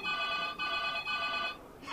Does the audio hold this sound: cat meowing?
no